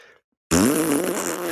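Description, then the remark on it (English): After a brief faint sound and a moment of silence, a loud, buzzy fart noise blares for about a second, wavering in pitch and holding steady, alone. “Fart noises.”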